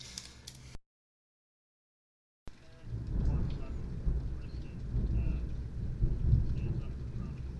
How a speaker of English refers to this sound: Is it raining at Steven's house? Yes. I'm sorry. It's also raining at my house.